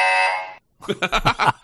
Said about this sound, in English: I got to get the buzzer.